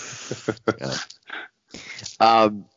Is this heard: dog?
yes